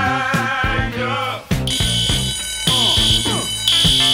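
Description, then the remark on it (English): A fire alarm kicks in about a second and a half in, a loud, piercing, steady high tone that keeps sounding over a busy, musical background until the end. “I have such a good fire alarm right now”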